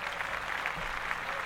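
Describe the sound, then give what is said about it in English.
A steady wash of applause from a small group, dense overlapping claps holding an even, moderate loudness throughout the brief moment with no voices on top. “Let's clap that up, right?”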